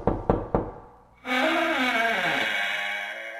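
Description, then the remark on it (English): Three quick, firm knocks on a door by a guest arriving at a studio, in steady rhythm, followed after a brief pause by a long, bright sustained ringing tone that slowly fades. No one speaks. “Fred's at the door now. Let's bring him in the studio.”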